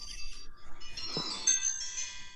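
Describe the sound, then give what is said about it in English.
A phone ringtone plays a bright, tinny electronic melody of sustained notes from Star Wars, steady for a couple of seconds, with no one speaking over it. “Star Wars is calling.”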